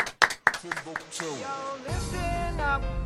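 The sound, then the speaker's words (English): A short burst of sharp transients and talking gives way to a dense, steady wash of applause from a crowd for Thomas Barr, loud and continuous through the last second or so with voices mixed in. “So, isn't a round of applause, please,”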